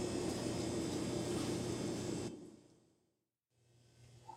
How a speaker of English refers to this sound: Do you hear that white noise?